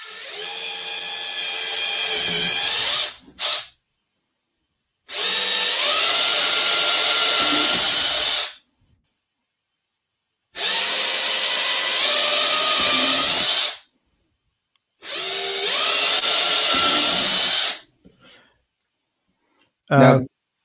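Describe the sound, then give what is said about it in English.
A long power drill runs in four sustained bursts of about two to three seconds each, its high whine rising and straining as it bores holes, with short silent pauses between holes. “So we're just going to go ahead and drill these out.”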